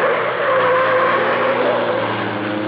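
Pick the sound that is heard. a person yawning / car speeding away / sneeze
car speeding away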